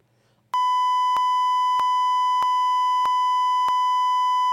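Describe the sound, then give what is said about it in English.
After a brief moment of near silence, a loud, steady censor bleep tone switches on and holds unbroken for about four seconds, with faint regular ticks pulsing through it. “you can beep that out. You can bleep that, buddy.”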